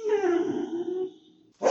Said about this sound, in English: Suddenly, Daisy the dog runs toward the door and whines.